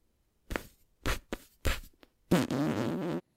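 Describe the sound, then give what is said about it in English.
A voice imitates farts with the mouth: four short sputtering pops, then one longer, buzzing raspberry, all fairly loud, with no talking. “I know, I looked up ASMR farting. But people are doing it with like their mouth.”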